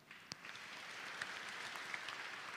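audience applauding

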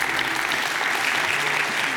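audience applause

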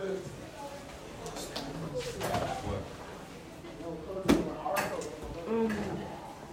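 door being closed

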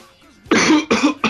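coughing

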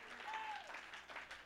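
audience clapping hands

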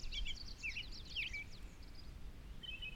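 robins singing

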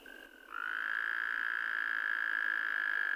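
toads calling

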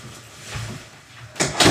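door being closed

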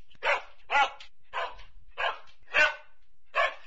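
dog barking on command

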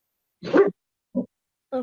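dog barking

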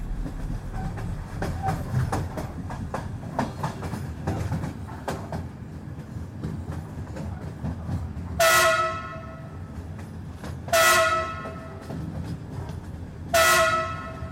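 train passing with horn

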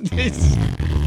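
whoopee cushion fart noise

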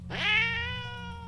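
agitated cat yowling

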